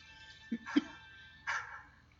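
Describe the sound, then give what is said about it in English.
A dog barks three times, two quick yips close together followed by a longer, drawn-out bark, all fairly faint against a quiet background. “I know that bark.”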